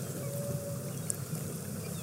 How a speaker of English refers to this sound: Faintly audible. Oh! We heard the feeding call of the humpback whales and then the sound of this congregation of whales erupting through the surface of the water.